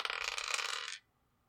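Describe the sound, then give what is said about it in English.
Dice clatter and rattle across a hard tabletop in a quick burst lasting about a second, then stop abruptly into near silence. No one speaks. “All right, roll your dice and tell me what you get.”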